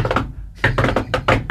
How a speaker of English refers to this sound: That sounds like two distinct knocks.